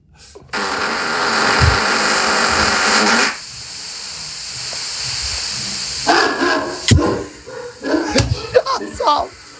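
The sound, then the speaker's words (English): A long, loud, raspy fart rumbles for about three seconds, then after a brief pause sleeping dogs wake and erupt in a flurry of short, startled barks and yips. “At number 30 on this chart, fart wakes dogs.”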